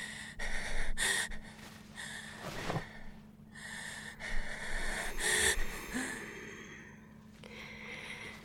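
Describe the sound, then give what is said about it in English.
Heavy, ragged gasping breaths repeat in a hotel, wheezy and strained, each inhale harsh and noisy over several seconds, with no talking. “You're breathing.”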